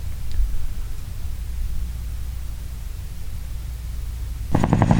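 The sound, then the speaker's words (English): A steady, droning helicopter rumble fills the air, with a heavy low-end throb under broad hiss, swelling louder and more rhythmic near the end as if passing overhead. “Flying high in the sky in the Renegade Nation chopper as we fly over you”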